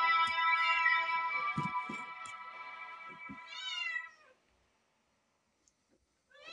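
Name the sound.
cat meowing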